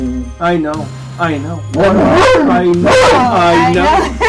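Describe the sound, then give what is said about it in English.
Otis, a hound dog, barks and whimpers in drawn-out, wavering cries, two short ones first and then a loud, nearly continuous run of yowling whines over a low steady hum. “First co-host is Otis, the hound dog.”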